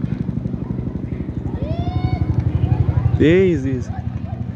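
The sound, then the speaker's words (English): A helicopter's rotor beats steadily throughout, a rough, rapid chopping that sounds far off yet loud, with a short voice rising over it near the end. “You see how far it is, and it's making so much noise.”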